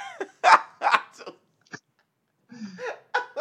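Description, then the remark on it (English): A sneeze bursts out amid a few short, sharp, breathy vocal outbursts, loud and abrupt, separated by brief pauses with a small click in the middle. “It was a sneeze.”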